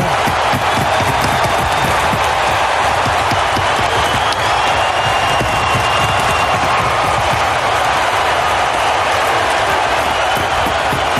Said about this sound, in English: You know, the one thing that sticks out to me is how loud the crowd was, and the Wings won the game.